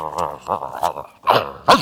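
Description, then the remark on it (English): A person's voice mimics grumbling with a run of low, growly murmurs that rise and fall, fairly loud, ending in two sharper, louder grumbles. “And grumbling has got to be one of the top 10 most annoying sounds in the world.”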